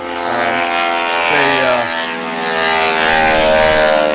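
A loud, rasping propeller roar of a T-6 airplane at an air show flight line, its prop tips breaking the sound barrier, the harsh buzzing drone shifting in pitch as the aircraft passes, staying strong and steady for the full few seconds.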